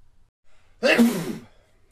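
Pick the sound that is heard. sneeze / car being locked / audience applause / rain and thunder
sneeze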